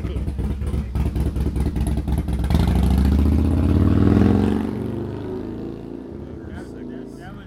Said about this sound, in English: Sloppy jalopy 1940s Jeep motorcycle.